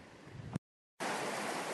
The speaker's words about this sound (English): Sure thing. We're sitting along one of the tributaries of the Salmon River.